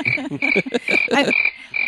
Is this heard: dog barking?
no